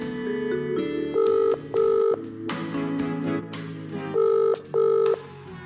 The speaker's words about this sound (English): Phone call to Jay.